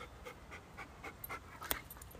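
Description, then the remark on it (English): A dog named Pepper pants steadily, quick rhythmic breaths repeating about every quarter second, with a brief sharp click partway through and no talking. “And if we're lucky, we might hear them do their thing over Pepper's hot breathing.”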